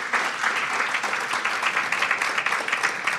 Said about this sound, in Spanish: Démosle fuerte esas palmas al Rey.